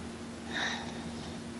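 A single soft, airy breath swells briefly and fades, a quiet hissing rush over a faint steady hum, with no talking.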